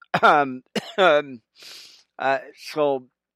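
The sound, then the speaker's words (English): Several short, raspy coughs from a person with a cold, coming in uneven bursts with a throaty, clearing quality and a breathy intake of air partway through; no other sounds around them. “I've got a little bit of a cold going on, but, and a little bit of cough, but, I'm staying at it, friends.”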